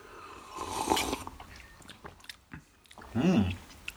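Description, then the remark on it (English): Slurping first sips of hot, freshly brewed mellow coffee: a soft airy slurp early on, scattered mouth noises, then a louder wet sip with a throaty swallow near the end. No talking. “Guess we'll first sips. Man. First sip, man.”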